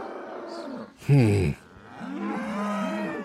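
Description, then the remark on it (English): A herd of cattle in a valley moos twice, first a short, loud bellow, then a longer, drawn-out moo that rises and falls, with faint background noise and no talking. “I had noticed on my ride to the camp early in the morning that there was a good-sized herd of cattle laying in the neighboring valley.”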